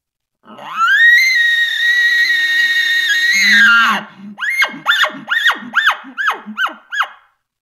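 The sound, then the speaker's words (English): A hunter's imitation elk bugle, calling to an elk: a long, high, whistling squeal held for about three seconds, then a rapid series of about seven loud, rhythmic grunting chuckles. “And I'll throw those calls out myself to see if I can incite that in whatever elk I'm calling to.”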